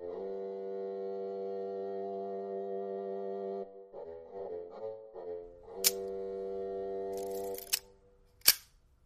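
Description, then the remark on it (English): A steady humming harmonic tone shifts into a few wavering notes, then sharp camera shutter clicks snap out, three crisp mechanical clacks, the last one loudest. “Have you ever given any thought to the sound of the camera shutter?”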